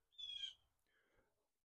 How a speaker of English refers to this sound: damn, that fucking bird's loud. Could you pick a different tree, bird, please?